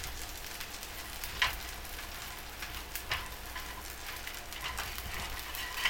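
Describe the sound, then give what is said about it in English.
Steady sizzling of bacon frying in butter, a dense crackling hiss with occasional sharper pops and spits, continuous throughout with no talking. “Oh, that is frying.”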